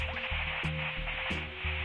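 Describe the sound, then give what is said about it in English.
Steady, loud TV static hisses throughout, a dense wash of noise with a low electrical hum and faint buzzing tones pulsing underneath, no voices present. “It's just static from here on out.”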